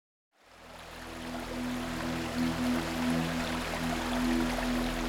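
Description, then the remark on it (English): A steady, continuous rush of flowing water from a secluded stream, Belstead Brook, just outside the port town of Ipswich on the east coast of England, on a crisp winter morning. It fades in quickly and holds at an even level, with a faint low hum beneath it and no voices. “A secluded stream just outside the port town of Ipswich, Belstead Brook was renowned among local fishermen”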